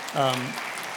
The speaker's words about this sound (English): Yeah, we can clap for Catherine.